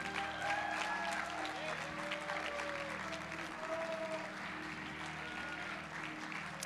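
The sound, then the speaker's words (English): A church audience at Grand Rapids River of Life claps and applauds steadily during a morning service, a dense wash of many hands, with crowd voices and cheers mixed in throughout. “Let's clap our hands to the Lord this morning.”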